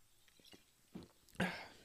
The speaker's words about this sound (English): Get a quick sip of water here.